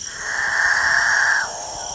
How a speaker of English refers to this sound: A herd of nervous cattle? A distant motorboat? It's the dawn chorus of male capuchin birds, one of the most bizarre members of one of the most bizarre bird families in South America, the catingas.